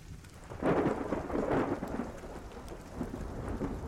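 Steady rain hisses throughout while a deep rumble of thunder swells around the first second and rolls on for about a second before fading back under the constant downpour.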